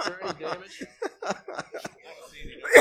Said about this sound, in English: Sorry. So funny I had to cough.